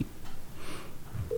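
Brief electronic phone dialing tones sound as a call is placed to a mobile phone, ending in a steady beep, fairly quiet over a low background hum with no one talking.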